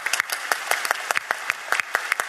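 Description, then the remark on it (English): An Intelligence Squared audience applauds to welcome David Feinberg, CEO of Geisinger, a steady wash of many hands clapping with sharp, irregular claps rising above it throughout, fairly loud, with no voices. “David Feinberg, welcome to Intelligence Squared, and let's thank give you. You a round of applause to welcome you here.”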